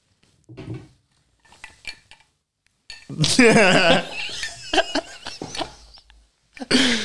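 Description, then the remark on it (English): Drink from a bottle is poured into glasses, with a gurgling rush mid-clip and several sharp, scattered clinks of glass and tableware before and after. “So he just pretends to pour in his glass, so I pour the fuckload in mine.”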